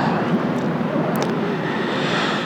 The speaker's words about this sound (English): Every wave that comes and crashes into the shore is an invitation to breathe, to receive that. So see, every wave that crashes into the shore brings a breath.